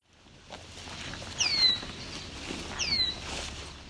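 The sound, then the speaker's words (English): Two sharp, high, downward-slurred calls of a red-winged blackbird, about a second and a half apart, over a soft outdoor background hiss. “This was the call of a red-winged blackbird.”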